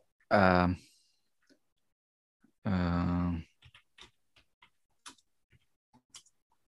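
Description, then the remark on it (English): Typing on a computer keyboard into a Google search: a quick, irregular run of sharp clicks over several seconds, preceded by two short, loud voiced hums with no clear words. “is furiously typing into the Google.”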